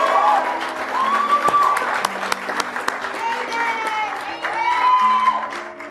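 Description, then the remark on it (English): A large audience claps steadily and loudly for several seconds for the men and women of law enforcement, with scattered whistles and cheers rising above the dense applause. “And let's give a big round of applause to the men and women of law enforcement who have done a great job.”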